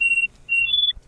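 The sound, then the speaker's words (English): A communicator (comm) beeps as the hospital calls, with a few short high-pitched electronic tones that step slightly upward in pitch. The tones are clear, with no voices. “At the end of that day, Tazi, your comm beeps.”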